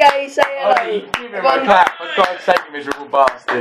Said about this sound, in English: Say hello. Give him a clap for God's sake, miserable bastard.